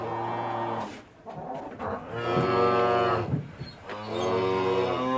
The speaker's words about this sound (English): The cows are distracting me.